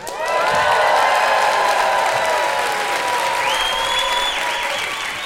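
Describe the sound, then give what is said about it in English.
A live audience at a Science Versus live show in Australia bursts into loud, sustained applause and cheering, with scattered whistles and whoops rising over dense clapping that carries on steadily throughout. “So please make sure to cheer very loudly”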